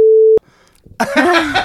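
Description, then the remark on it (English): A loud, steady mid-pitched censor beep sounds once for about a third of a second and stops abruptly. After a short near-silence, a burst of voiced, noisy sound follows. “Beep that in your brain”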